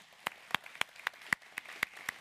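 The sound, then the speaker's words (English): An audience at the Bridge claps in steady unison to welcome first-time guests, about nine sharp, bright hand claps in quick, even rhythm over two seconds, with no voices. “And if it's your first time out, I want to welcome you to the Bridge, and we do that with a hand clap.”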